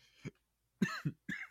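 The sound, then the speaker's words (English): A quick series of harsh coughs: one short burst, a pause, then two or three more sharp hacks in quick succession, with no talking. “Edit out the cough.”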